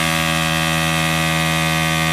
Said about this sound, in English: … thinks that this is a human scanner at an airport. Yeah, no. This way, please, sir. Is this a scanner? Yes, it is, sir.